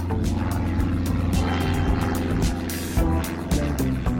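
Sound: small propeller plane engine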